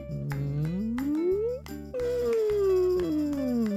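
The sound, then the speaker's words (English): A voice imitates a mournful whale call: a long moaning tone that slides slowly upward, breaks, then glides back down, over a steady pulsing musical backing. “I wonder if you can do a sad whale sound.”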